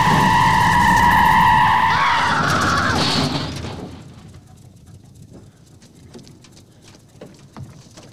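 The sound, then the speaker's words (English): A car's tires screech loudly in a sustained, high-pitched skid for about three seconds, then the noise drops away to quieter street ambience with faint scattered rustles. “Hey, you gotta watch out for traffic, son, you know?”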